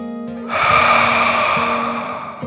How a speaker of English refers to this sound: The fluffy yellow bunny took a deep dragon breath in and out.